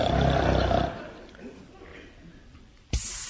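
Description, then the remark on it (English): A record of royal snoring is played: a loud, rasping snore rumbles for about a second, then fades to a low murmur before a sudden breathy hiss bursts in at the end. “I've just put on this record of royal snoring.”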